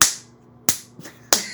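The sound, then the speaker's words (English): A voice mimics the punches and slaps of a fist fight: three sharp smacking bursts roughly two-thirds of a second apart, with a fainter pop between the last two, and no speech. “We'd just be punching each other.”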